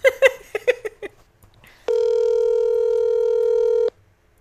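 A quick run of about seven electronic keypad beeps as a phone number is dialed for a call, then a brief pause and a loud, steady phone tone held for roughly two seconds before cutting off. No voices.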